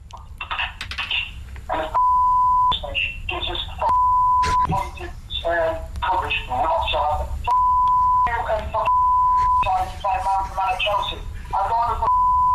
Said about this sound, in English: I mean, there's so much bleeping. It's basically in Morse code.